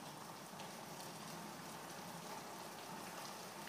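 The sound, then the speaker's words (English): Steady rain falls continuously in Wichita, a dense, even patter of countless drops hissing across a surface at a constant moderate level, with no voices. “She was sweet enough to send over the sound of the rain falling over in Wichita where she lives.”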